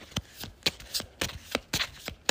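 A deck of cards being shuffled, with a quick series of sharp riffling snaps and flutters spread across a couple of seconds, no talking.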